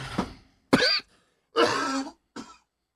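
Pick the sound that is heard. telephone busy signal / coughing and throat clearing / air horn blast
coughing and throat clearing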